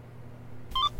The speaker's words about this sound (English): What was that? Just got a notification.